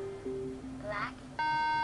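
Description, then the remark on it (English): An electronic device emits a loud, steady beep in the last half-second, preceded by softer, lower electronic tones, with faint murmuring in the background. “Why is this thing beeping at me? Is this dying?”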